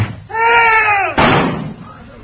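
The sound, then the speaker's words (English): A door swings closed with a long, high creak of the hinges, then shuts with a single loud slam that rings briefly before fading. “Now, I shall close the door.”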